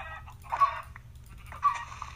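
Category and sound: animal, chicken clucking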